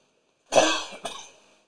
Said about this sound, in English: I know, excuse me for coughing.